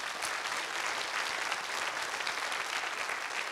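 audience hand clapping

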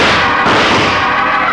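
gunshots

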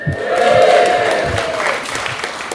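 audience cheering and applauding

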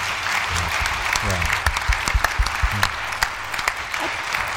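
audience applause

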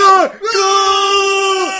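scream

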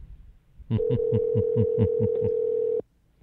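phone call ringing

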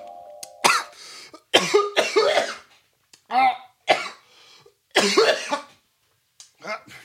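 repeated coughing

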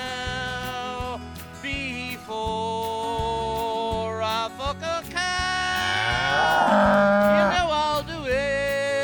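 cow mooing

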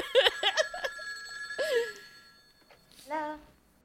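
telephone ringing

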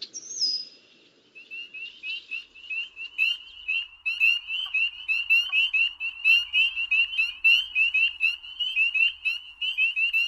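frogs croaking

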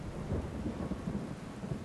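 heavy rain at night

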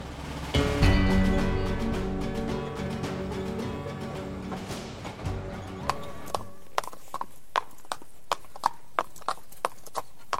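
horses' hooves clip-clopping

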